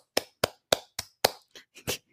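Seven quick hand claps in a steady, slightly uneven rhythm, the first five sharp and loud, the last two softer and more muffled, with no talking.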